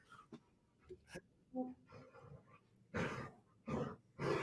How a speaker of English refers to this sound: What I was saying is the dogs hear your voice and the animals, and they start congregating into the office and doing this.